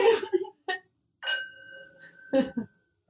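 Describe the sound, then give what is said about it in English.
A single bright clink of wine glasses touching in a toast, followed by a clear ringing tone that lingers for about a second, with brief bursts of voices just before and after. “Cheers.”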